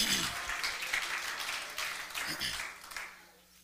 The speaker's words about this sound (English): Can we clap our hands to the Lord in Jesus' name? Hallelujah.